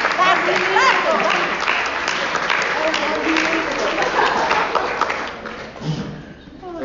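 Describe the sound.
Steady, sustained audience applause welcoming a guest speaker to a meeting, with many hands clapping in a dense wash of sound, holding level for several seconds before thinning out, with faint voices mixed in.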